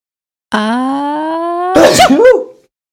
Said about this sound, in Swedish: Oh, vänta, nu måste jag nysa.